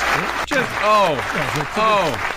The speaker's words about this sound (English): I want some applause for this episode.